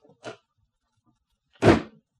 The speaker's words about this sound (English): She slammed the door nearly as hard as she'd slapped my face.